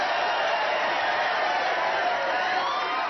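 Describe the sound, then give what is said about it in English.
A crowd applauds steadily with a few cheers mixed in, a dense, continuous wash of clapping that holds at an even, moderate level throughout, with no one speaking. “A round of applause”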